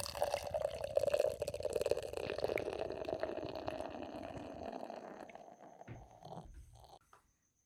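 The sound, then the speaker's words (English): Speedway Stout beer glugs and splashes steadily into a glass for several seconds, fairly loud, then trickles off into a few final drips before stopping. No one speaks. “This is all poured out.”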